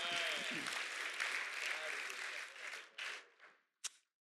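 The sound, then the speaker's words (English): An audience claps hands together at a morning service in a dense, sustained wave of applause that tapers off, with a few scattered final claps and some voices mixed in at the start. “Let's clap our hands this morning.”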